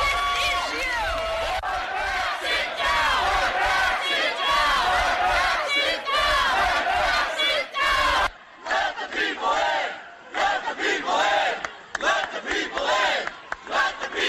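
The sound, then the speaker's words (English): A loud, dense pro-union protest crowd shouts and chants over one another, with overlapping raised voices throughout; after a brief dip partway through, the yelling resumes just as intense. “Some of the pro-union crowds raided a tent full of right-to-work supporters.”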